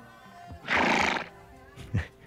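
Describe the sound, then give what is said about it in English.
A white horse ridden by a hooded figure in black lets out a loud, shaky whinny lasting about half a second, followed by a brief snort or hoof thud, with no talking. “And then a hooded figure in all wearing all black rides by on a white horse.”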